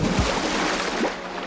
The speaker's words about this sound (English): Everybody watched nervously as Cranky turned his crane arm and gently lowered the whale into the water with a sploosh.